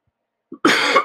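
A single loud cough, preceded by a brief throaty catch, bursts out harshly and trails off, with no talking around it.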